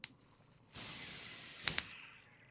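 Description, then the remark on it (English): A hard pour of beer into a glass: a steady foaming hiss rushes for about a second, broken by two sharp clinks, then fades out. A small click comes before it. “That's a hard pour.”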